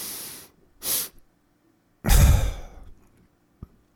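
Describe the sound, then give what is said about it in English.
In a guided breathing exercise, a long airy inhale through the nose, then a short sharp sniff, a pause, and a loud breathy sigh-like exhale that fades out, followed by a faint click. No one speaks. “So in about 60%, then a sniff of 10, and then out.”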